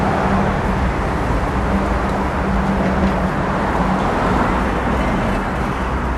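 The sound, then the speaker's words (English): Steady engine and road rumble from a Honda Pilot SUV driving past, with a low droning hum that holds level throughout without building or fading. No one speaks. “Sorry, Honda Pilot.”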